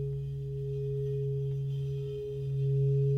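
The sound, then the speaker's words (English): A mostly brass Tibetan sound bowl, struck and then sung, rings in a steady, sustained hum, its low fundamental layered with clear overtones that shimmer and swell slightly toward the end, with no voices present. “Because of the way that it's constructed, and mostly brass, the healing qualities are such that they have many overtones.”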